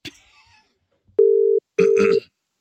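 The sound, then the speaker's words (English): Two short, steady ringback tones of an outgoing phone call to a friend, clear, the second joined by a burst of muffled noise; a brief faint rustle precedes them. “Yeah, let's phone a friend.”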